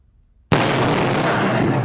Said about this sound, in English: That is a giant boulder crashing into a house in Honolulu, narrowly missing a woman by just inches. It's believed excavation work nearby caused the boulder to come barreling right through the cinder block wall.